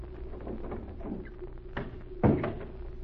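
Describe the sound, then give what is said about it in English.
A door is handled: a sharp click, then a solid wooden thump as it shuts a moment later, with light shuffling and creaks around it and no voices. “Now, mademoiselle, here's the door.”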